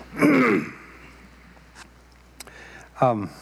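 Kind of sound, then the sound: human body sound, throat clearing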